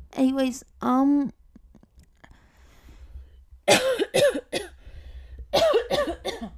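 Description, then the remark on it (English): A person coughs several times away from the microphone: two quick hacks, a short pause, then a harsher run of rapid coughs, with no talking in between. “Sorry, didn't want to cough into the mic, that's disgusting.”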